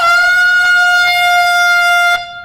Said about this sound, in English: Well, let's find out if it does. I did bring an air horn because I love you.